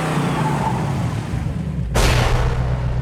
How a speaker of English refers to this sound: Yeah, classic car sound. Vroom!